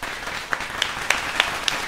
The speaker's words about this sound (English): Let's just stop right there and, you know, go to the soundboard and get the artificial crowd.